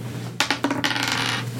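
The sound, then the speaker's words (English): A few sharp clacks in quick succession as dice hit a table, followed by about half a second of rattling as they tumble and settle, over a low steady hum. The dice are rolled for a worldly check. “Roll your worldly.”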